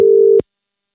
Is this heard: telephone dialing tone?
yes